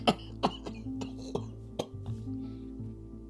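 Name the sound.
coughing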